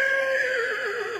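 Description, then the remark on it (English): A high school girl imitates a horse's whinny, a sustained, wavering high-pitched neigh with a shaky vibrato, loud, lasting just over a second with no other sounds. “This is some girl in high school. This is her sounding like a horse.”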